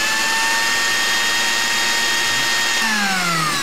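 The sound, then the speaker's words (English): An ice cream machine runs with a steady, loud motorized whir like a blender, continuously, its pitch sliding slightly downward near the end, with no one talking over it. “Ice cream machine's working.”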